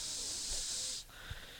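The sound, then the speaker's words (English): A person makes a drawn-out hissing sound imitating a snake, a steady sibilant hiss lasting about a second, then a softer, lower hiss trails off. No words are spoken. “Are you saying he's a snake monster?”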